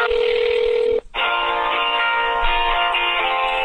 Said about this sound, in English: Okay, so just be on the line. I'm dialing his line.